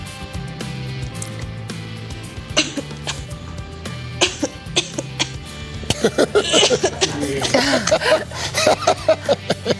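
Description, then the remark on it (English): A dog's owner coughs several times in sharp bursts, with a low background hum; later the coughing grows rougher and more continuous, with raspy, throaty sounds and some movement noise. “But when this dog's owner coughs, the pooch is not subtle about trying to put some distance between them.”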